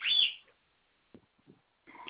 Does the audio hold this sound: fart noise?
no